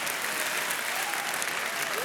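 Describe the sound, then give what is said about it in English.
A crowd claps steadily, a dense wash of many hands applauding at an even, sustained level for a couple of seconds with no clear pauses. “I wasn't asking for a clap.”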